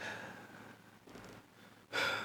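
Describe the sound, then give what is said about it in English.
Harsh, heavy breathing from a person hunched over: ragged, noisy inhales and exhales, ending in a sudden loud, rasping gasp. No one speaks. “made it back to the chamber, where his colleagues had once gathered, hunched over and breathing harshly.”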